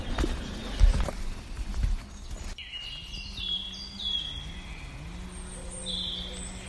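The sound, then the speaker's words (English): A few hollow hoof clops of a horse going by on a woodland path in the first couple of seconds, further down the path, then quieter outdoor ambience with birds chirping in the background. “Just heard a horse going by a short while ago, further down.”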